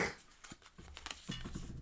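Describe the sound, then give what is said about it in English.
A blank slip of paper, picked from a set of slips, is handled and crumpled up, giving a quick run of soft crinkles and rustles with a few sharper crackles, no voices. “a blank bit of paper. Well, that's because you didn't pick any of the ones that were folded up, you numpty.”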